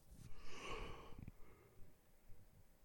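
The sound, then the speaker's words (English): A single yawn: a long, breathy inhale-exhale lasting about a second, then it trails off into quiet room tone. No talking. “Sorry for the yawning, y'all.”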